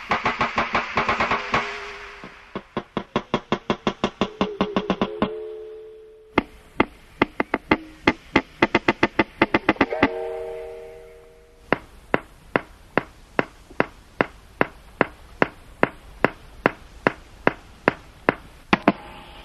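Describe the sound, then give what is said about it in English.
Underwater breeding sounds of a wild walrus in the Canadian High Arctic: rapid trains of sharp, hollow knocks, some speeding into rattling bursts, mixed with ringing bell-like tones. The calls are fairly loud, with no one talking. “This medley of breeding sounds includes knocks and bells.”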